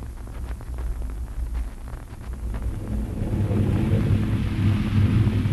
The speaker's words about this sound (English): Get out of back here to the barn. Storm's coming.